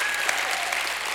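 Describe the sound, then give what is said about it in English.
A church audience bursts into steady, dense applause, many hands clapping at once for the Lord with a few scattered shouts of praise mixed in, loud and continuous throughout. “Give the Lord a hand clap and a shout of praise if you've been redeemed.”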